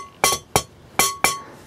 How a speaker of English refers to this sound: Can you hear that? If you hit a bowl, one of these, if you hit one of these singing bowls with something in it, it makes a thud. Look.